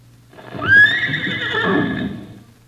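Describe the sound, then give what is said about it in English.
A horse lets out one long, loud whinny, a high quavering neigh that rises sharply and then wavers for over a second before trailing off, with no one speaking. “Well, it sounds like a corral. The fence around a corral where they keep horses, and the horse would be trying to...”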